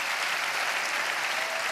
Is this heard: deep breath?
no